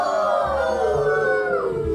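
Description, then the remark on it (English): A group of boys in the werewolves team of a Halloween quiz howl together like werewolves, a sustained, wavering chorus of voices with a falling pitch toward the end, loud and continuous for about two seconds. “You're either going to be in the werewolves. Could you give me a...”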